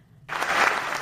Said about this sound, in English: Round of applause.